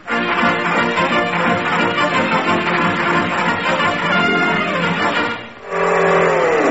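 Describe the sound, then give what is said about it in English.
A borrowed car's engine revs loudly and roars continuously, briefly dipping before surging again with a shifting, whining pitch as the car accelerates off to chase a jeep. No one speaks. “Well, then I'll chase him. Give me your car, Now, wait a minute.”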